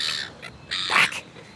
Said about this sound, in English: Some of the seagull calls sound a bit like they're saying, mine, mine, mine, as if they think their chips are theirs.